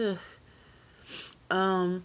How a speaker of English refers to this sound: Oh, I also wanted to tell you guys, yeah, I got the sniffles again.